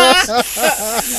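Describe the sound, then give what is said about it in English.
A person imitates a sizzling hiss as their own version of a gasp, a loud, breathy, sustained hissing with a voiced tone wavering through it in three or four rising and falling bursts over about a second. “My gasp starts sizzly. I start sizzling.”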